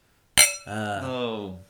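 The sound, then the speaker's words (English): A single bright, sharp clink of glasses touching in a toast for a 15th anniversary, followed at once by a drawn-out voice. “It's our 15th anniversary. And we don't have a Ben. Cheers. Cheers.”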